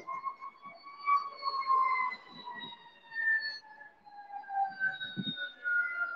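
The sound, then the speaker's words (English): An emergency siren from police and ambulance vehicles wails steadily with slowly gliding tones, moderately faint, over low rumbling background traffic noise. “There's a lot of cops and ambulance down here.”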